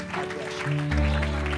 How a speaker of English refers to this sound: Hallelujah. I wonder, would you give that hand clap unto the Lord tonight? Come on, anybody thankful to be in his presence?